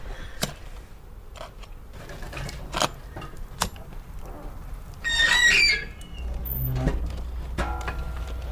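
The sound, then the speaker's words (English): A fire is being lit in a stove with paper and small bits of kindling, with scattered sharp crackles and clicks, a brief squeaky high-pitched sound, then a low steady rumbling roar as the kindling catches. No one speaks. “Got some, a little bit of paper and some smaller bits of kindling so we can kind of get the fire started.”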